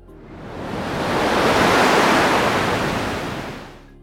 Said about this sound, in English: it was a monstrous wave, and it was heading right for them. Shackleton wrote that in his 26 years' experience on the sea, he had never seen a wave this gigantic. He screamed above the wind, "For God's sake, hold on, it's got us!" And then it hit.